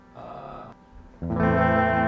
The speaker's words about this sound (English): It's got an echo. It's got an interesting effect also.